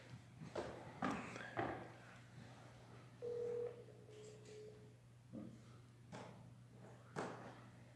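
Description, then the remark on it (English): A single steady electronic phone tone sounds for about two seconds, like a call being placed, amid scattered clicks and knocks over a low constant hum, with no answer. “He didn't answer? He didn't pick up.”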